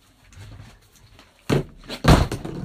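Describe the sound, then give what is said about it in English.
Two heavy, loud thumps land about half a second apart as objects are slammed down onto a table where the microphone is positioned, after a stretch of quiet background rumble. “You're just slamming stuff on the table where your mic is positioned.”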